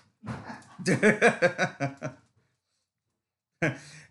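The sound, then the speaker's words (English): A dog whimpers and yips in a quick run of high, whiny cries, then falls silent briefly before letting out one more short whine. “We're taking a break to corral dogs and toddlers.”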